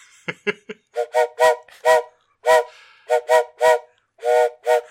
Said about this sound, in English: I think I hear something. Yeah? You hear the train coming? A coming around the bend?